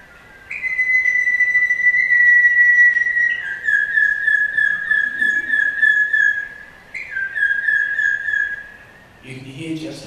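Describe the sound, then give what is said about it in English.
A bird sings two long whistled phrases, each opening on a sustained high note that breaks into a rapid, pulsing trill before fading, heard clearly on its own. It is a recording of a regional birdsong dialect from Western Victoria. “Now the other thing that birds do in the dawn is that they don't all sing over the top of each other”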